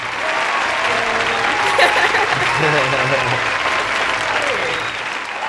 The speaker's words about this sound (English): Salute you. Yeah. Round of applause. Yeah.